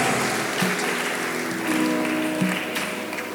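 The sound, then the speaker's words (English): A crowd claps steadily in sustained, dense applause to encourage people coming forward, loud, with a faint murmur of voices underneath. “Let's clap and encourage them as they come forward.”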